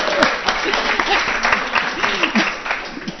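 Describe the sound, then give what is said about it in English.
A crowd at the Howell Senior Center applauds itself steadily, many hands clapping in a dense, continuous patter that holds at a fairly even loudness for a few seconds, with a few voices murmuring underneath. “And you have the best senior center around, and I want you to give yourself a little applause.”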